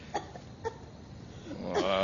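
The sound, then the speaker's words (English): A woman coughs twice in short, muffled bursts from behind a door with smoke coming out, followed by a longer strained, voiced cough near the end. “Jiminy, I hear a dame coughing.”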